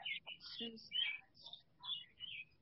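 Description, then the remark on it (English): Birds chirp and twitter outdoors in quick, bright bursts of song that overlap one another. The calls are fairly faint, over a low background rumble. “There's hold on, there's birds. Are those birds? They are birds.”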